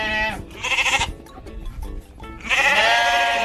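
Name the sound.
sheep bleating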